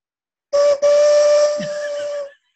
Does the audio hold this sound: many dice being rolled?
no